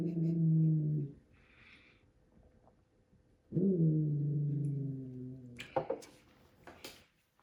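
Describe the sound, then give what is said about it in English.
A dog growls in two long, low, drawn-out bursts, loud, separated by a pause of a few seconds, followed by some brief clattering noises. No one speaks. “That's the werewolf growling right now.”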